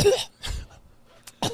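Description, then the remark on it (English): A few short, breathy coughs: two quick bursts, a brief pause, then a final sharper cough, with no talking. “You cough like a little.”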